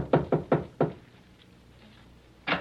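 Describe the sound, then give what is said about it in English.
Four quick, solid knocks on a door, loud, followed by a pause of quiet and then a fifth knock. “while I answer the door.”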